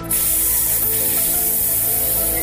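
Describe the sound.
A loud, steady hissing noise heard on a New York City subway platform starts abruptly and holds unbroken for a couple of seconds, bright and airy like a spray, over a faint low hum.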